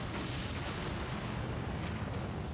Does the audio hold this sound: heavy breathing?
no